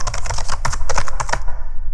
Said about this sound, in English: There's another keyboard here. I'm just going to type in finals grades.